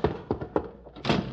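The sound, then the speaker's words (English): A stuck front door by a porch is shoved and jolted with several dull, uneven thunks, then bursts open with a louder, scraping rattle at the end. No one speaks. “Hope the door's unlocked. There's the porch. Oh! Darn roller skates! Door's stuck.”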